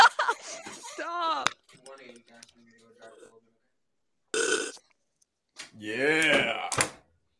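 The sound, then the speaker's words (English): A person makes several wet slurping noises with the mouth while sipping close to the microphone, some with a gurgling, voiced quality, in short bursts separated by brief pauses. “Yeah, I was gonna say I've never heard anyone struggle to make a slurping noise.”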